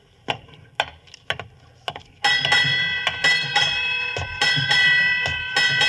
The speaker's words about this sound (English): Eight bells. Let's see, that'll be... Midnight, Watson.